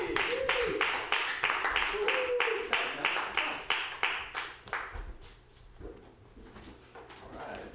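Audience applause at a stand-up comedy show, welcoming the next comic to the stage: many hands clapping in a dense, loud burst that keeps up for about five seconds, then thins out and fades into scattered murmurs.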